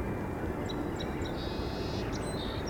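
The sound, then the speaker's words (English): Several song sparrows sing in competition with one another, tossing out high chirps and a buzzy trill, half-buried under a steady low rumble like a plane droning overhead. “They're singing in competition with one another.”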